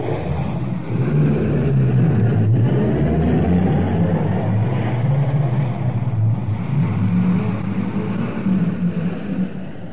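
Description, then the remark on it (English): Steady, loud engine noise of several rescue cars pulling away out of a station in London in response to an air raid warning, a continuous low rumble with some revving that holds for the whole stretch without fading out. “They're all in the cars now. They're out of the station already. They've gone.”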